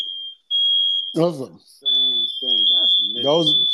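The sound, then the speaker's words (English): A loud, shrill smoke alarm tone sounds steadily, drops out for a moment, then resumes and keeps going while people talk over it. “Smoke alarm, I'm like, yo, for real, man?”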